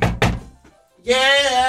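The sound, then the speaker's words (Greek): Two heavy knocks in quick succession by a man outside a bathroom door, followed by a short pause and then a voice calling out loudly. “Λοιπόν, και χτυπάει την πόρτα.”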